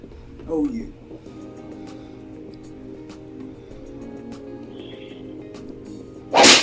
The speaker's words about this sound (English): Slapped her again.